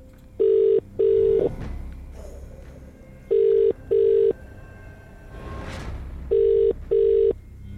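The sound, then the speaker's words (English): An outgoing phone call to a randomly selected person, a cab driver driving in London, rings three times, each ring a pair of steady electronic tone bursts separated by pauses, fairly loud and clear over a faint background with no talking. “3 rings right there.”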